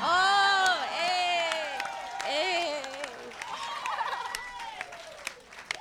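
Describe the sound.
An audience claps steadily and loudly for a joke for several seconds while excited voices whoop and cheer over the applause.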